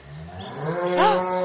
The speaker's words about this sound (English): There's a cow in here. A lot of animals. Hello, Mr. Hello, cow. Hello, cow. What's your name? Bessie? Bessie the cow. Bessie. Very small cow. Yeah, fitting in a hot air balloon.